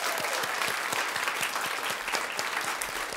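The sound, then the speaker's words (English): Steady applause from an audience for the live theme music, a dense wash of many hands clapping at an even, sustained level throughout, with no voices standing out. “A round of applause for our live theme music.”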